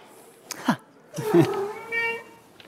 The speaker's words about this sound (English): Okay, so the answer, the cat behind the door was cat number two. Let's hear that again.